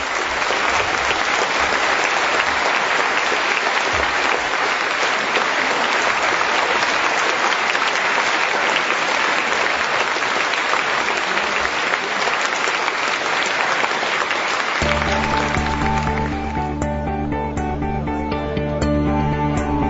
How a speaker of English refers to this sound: Can you join me, though, in giving a really warm round of applause and thanks to all our speakers this evening?